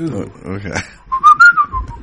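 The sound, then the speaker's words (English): After a moment of talking, someone whistles a short, eerie tune as a theme for a segment called the Archie Files, a few sustained notes gliding up and then down for about a second. “whistle us up a theme.”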